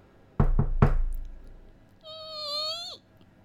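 Three firm knocks on the door of a house next door on Halloween, for candy, in quick succession, then a pause and a short, high, tonal sound that bends downward at the end. No one speaks.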